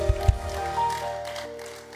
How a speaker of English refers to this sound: By faith, receive that prophetic word. In the name of Jesus, celebrate God with a good clap.